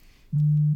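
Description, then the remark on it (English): A single loud, low buzzing tone lasting under half a second, a mobile phone notification alert going off, with no talking around it. “My phone is going mad.”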